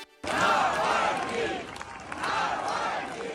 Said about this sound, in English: Crowds outside a church in Moscow for the funeral of Alexei Navalny. The Russian opposition leader died just 2 weeks ago in an Arctic penal colony. Mourners chanted, "Putin is a murderer."